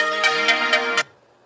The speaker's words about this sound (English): Well, I decided to let the alarm music go on for a while. Yeah. Gets everybody's attention.